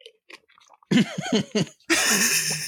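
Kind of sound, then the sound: human body sound, coughing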